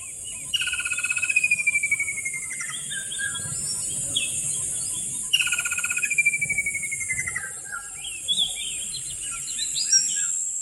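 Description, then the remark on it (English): Birds chirp and sing outdoors in bright, repeated phrases, with a clear descending whistle recurring twice, over a steady high insect buzz and low background hum. No voices. “Whether you want to relieve stress or re-energize after a long day, Nature Valley invites you to take in the outdoors, starting with this nature break.”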